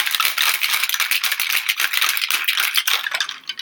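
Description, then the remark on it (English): Ice rattles hard inside a cocktail shaker with orange juice, lemon juice and smoked herb simple syrup, shaken for 30 seconds for a mocktail, in a fast, steady rhythm of bright clattering hits, loud and continuous, easing off slightly at the very end. No one speaks. “Then on top of ice in shaker, shake it again for 30 seconds.”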